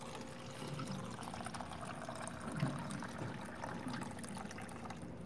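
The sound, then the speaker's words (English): Water pours steadily into a container as someone fills up their water, a continuous splashing and trickling that runs for several seconds with a slight swell midway, and no voices. “No, I'm just filling up my water.”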